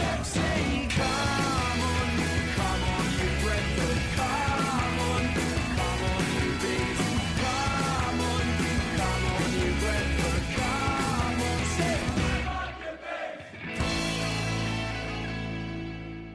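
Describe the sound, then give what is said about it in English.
A large football crowd chants and yells loudly and continuously against MK Dons, with a steady rhythmic beat running through it, before the noise briefly dips and then swells back into sustained roaring. “But before we say that, we're going to put MK Dons, a.k.a. Franchise FC, down with a big cheer off.”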